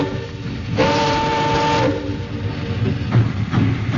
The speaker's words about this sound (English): Lonesome there on her caboose steps, I waved into the black Los Angeles night that devoured him in one last dark bite as the celery train slid down the mist-wet yards.